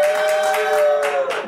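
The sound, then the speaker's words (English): A late-night show audience claps and cheers loudly to vote "forgive him", a dense, steady wash of applause with shrill whistle-like tones running through it, lasting the whole moment without any speech. “If you vote forgive him, make some noise.”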